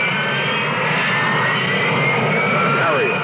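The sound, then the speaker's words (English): A Harrier jump jet's engine roars loud, a dense, steady rush of noise threaded with a high turbine whine that holds for the full few seconds. “It isn't a helicopter, but it could land in your backyard. Harrier. It isn't a conventional jet, but it can match the speed of sound.”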